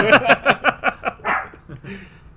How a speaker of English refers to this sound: Thank you for barking. Aww. Appreciate it.